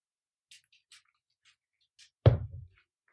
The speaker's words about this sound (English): Oh, I had to take a sip of whiskey.